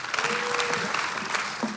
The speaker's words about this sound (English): Yeah, give them a big, big round of applause.